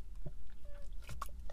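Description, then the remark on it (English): A quiet sip of Dunkin' Donuts coffee: a couple of soft wet slurping and mouth sounds, brief and intimate, with no one talking. “I'm going to take another sip of my coffee from Dunkin' Donuts.”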